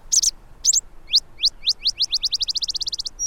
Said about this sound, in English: Bonnerized sparrows add their distinctive sputters and trills.